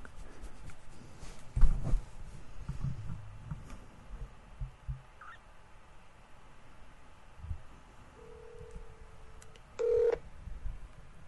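Faint telephone tones of a phone call on speakerphone: a steady, low ringback-style tone holds for about a second, then a shorter, louder beep sounds. Soft background rumble and clatter, no talking.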